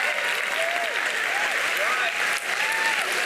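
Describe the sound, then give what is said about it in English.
Steady, dense applause from an audience for an audience member in a lime sweatshirt, a continuous loud wash of clapping with a few faint voices or whoops rising and falling through it. “Can we clap it up for the, can you stand up?”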